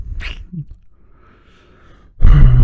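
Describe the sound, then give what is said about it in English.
A dog makes short snorting, grunting noises, a sharp huff at the start followed by quieter breathy sounds, then a louder, rougher grunting burst at the end. “Yeah, so random interruptions from my dog.”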